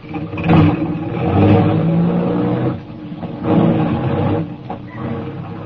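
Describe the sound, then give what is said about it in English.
A car engine revs and roars loudly, its pitch rising and falling in surges over several seconds as the vehicle pulls off, with no voices present. “We drove for about 20 minutes, and we stopped at a garage”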